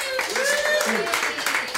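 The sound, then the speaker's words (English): A crowd cheers and claps for a couple of seconds in approval of the TV show Bridget and Eamon, with steady dense applause under loud voices whooping and calling out at rising and falling pitches. “So if you just like cheer...”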